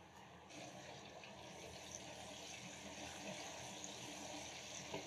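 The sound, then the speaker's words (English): Lamb being given a quick fry in a pan for a Thai pepper lamb Panang curry, giving off a steady, dense sizzle with fine crackles throughout, fairly loud, with no one speaking. “We're gonna put our lamb in, just gonna give it a quick fry.”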